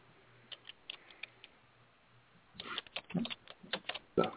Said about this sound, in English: Somebody's typing. It's not me. I hear typing.